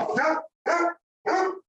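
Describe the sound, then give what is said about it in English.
A dog barks three times in a steady rhythm, each bark loud and slightly drawn out, with short silences between them and no one talking. “So they haven't barked once in this whole podcast time we've been doing it.”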